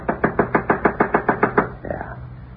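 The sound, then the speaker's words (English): About ten firm footsteps thud on the wooden boards of a front porch, approaching in a quick, steady rhythm and fairly loud, then trail into a softer shuffle. “Coming right up to the front porch.”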